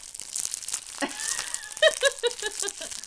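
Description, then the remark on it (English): Crinkly, crackling crunches of someone biting into milk chocolate treats from a British shop, crunched into the microphone ASMR-style, loud and crisp, with rustling wrapper noise, followed by a few short tonal squeaks or hums toward the end. “And crunch into the microphone?”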